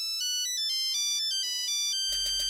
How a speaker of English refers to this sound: All this week on Manx Radio, if you can identify some classic tunes by their polyphonic ringtones